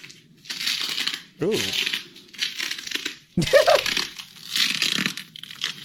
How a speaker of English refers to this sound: Those are her leggings? They're like latex. Like leggings, and so they sound like a balloon when she walks.